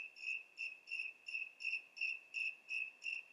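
Crickets chirp at night in a steady, even rhythm, about nine high-pitched trilling pulses repeating without a break. The sound is soft, with no voices or other noises around it.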